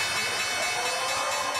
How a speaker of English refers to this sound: That's the opening bell on Wall Street.